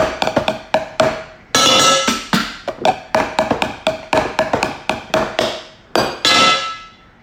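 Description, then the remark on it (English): Metal pots and pans are hit as a short musical sting, struck in a quick, irregular clattering rhythm, sharp bright clangs mixed with a couple of longer ringing crashes, loud and with no voices. “I kind of introduced this section before I hit those pots and pans, which is literally what's in that musical sting.”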